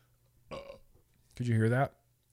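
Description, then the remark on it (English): Two burps in quick succession, a short one followed by a louder, longer, rumbling belch, with no talking around them. “It's difficult to try to be a serious harm reduction advocate and talk about the news while you're burping.”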